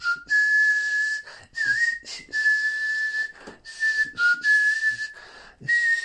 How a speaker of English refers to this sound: But what I learned as a child was a slightly different kind of whistle, which goes, it's a bit more high-pitched, more sort of like a...